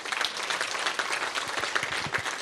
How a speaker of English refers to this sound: Thank you. A big round of applause, guys.